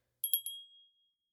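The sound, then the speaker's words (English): A small hand bell is rung three quick times in succession as part of a ritual with a candle and a book, its bright metallic tone lingering and fading out afterward. Fairly quiet and isolated, with no voices. “Think you can ring that bell?”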